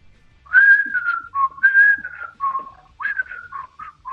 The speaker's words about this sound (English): The opening intro starts off with whistling.